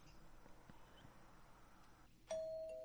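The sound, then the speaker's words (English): A doorbell chimes loudly near the end, a bright ding-dong that rings out and slowly fades, after a stretch of low, muffled background noise. “Ding dong.”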